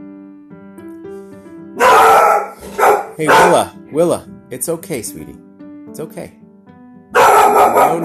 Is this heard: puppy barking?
yes